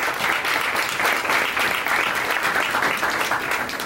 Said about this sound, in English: These guys right here are the ones who've been playing the jazz music upon entering. These guys have been here mixing it up, making the music happen. Let's give it a round of applause for them, please.